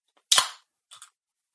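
A can of Celsius energy drink cracks open with a sharp pop and a short hiss of fizz, followed by two quick, softer clicks. No one speaks.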